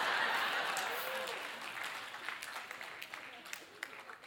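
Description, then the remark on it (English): A section of an audience at a church service, in a hall with about 1,600 seats, claps in a dense burst that gradually thins out into scattered individual claps, with a bit of crowd murmur underneath. “This section's clapping.”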